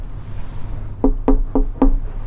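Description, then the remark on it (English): Four sharp knocks rap on a locked hotel door in a steady rhythm, fairly loud, over a low background hum with no talking. “Door's locked.”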